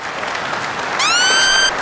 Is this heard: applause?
yes